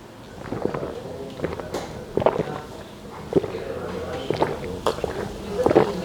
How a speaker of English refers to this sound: Were you trying to split the G? Not particularly, no. That was a real manly gulp.